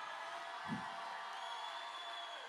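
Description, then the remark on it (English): An audience shouts and cheers unto the Lord in a steady, dense wash of overlapping voices that holds for the whole stretch, with one soft low thump early on. “Come on, somebody shout unto the Lord. While you're shouting, clap your hands.”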